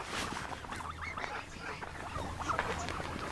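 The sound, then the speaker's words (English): A large flock of geese honks continuously, many overlapping calls forming a dense, busy chorus that stays steady throughout, with a low hum running underneath. “Wow, there are way more geese here than I thought there would be.”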